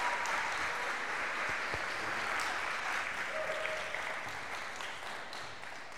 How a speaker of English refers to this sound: But I want you to put your hands together big time for the preacher this morning.